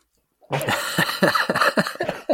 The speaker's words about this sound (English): Fun fact about me, I always sneeze a bunch of times. Anything more than twice, you're looking for attention.